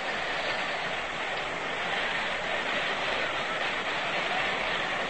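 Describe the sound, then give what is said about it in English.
A baseball stadium crowd buzzes in a steady, dense murmur after Davis's throw to the plate gets Nellie Fox out, an even wash of many voices with no single shout rising above it and no one speaking clearly. “Well, the fans, you can hear them, are buzzing.”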